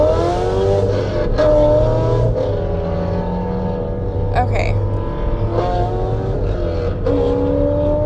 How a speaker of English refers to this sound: I promise that's not my car. I could not afford a car that sounds, that gets that loud.